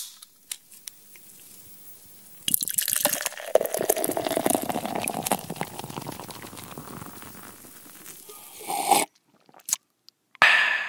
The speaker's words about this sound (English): So we have our drinks poured here. Now, wow, this is a heavy cup. It's a heavy pour. Heavy pour.